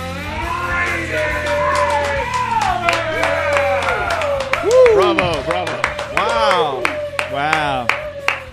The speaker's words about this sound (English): Hearty applause. Thank you so much.